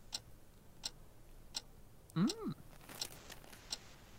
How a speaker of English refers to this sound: The clock ticking sound effect. A+.